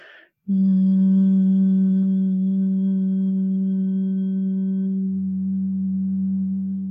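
A single steady hum, held loud and unbroken for about six seconds, with a low, even pitch and a slight drop in tone near the end. It is made with the tongue pressed to the roof of the mouth.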